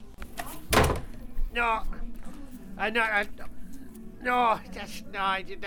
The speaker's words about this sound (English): you can dislocate a shoulder very easy by just walking into a door. And I'm going to try walking into a door now and see if I can dislocate it.